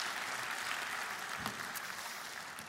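Sustained applause from an audience fills the whole stretch, a dense wash of many hands clapping at steady volume with no voices standing out, for a person as he goes off the stage.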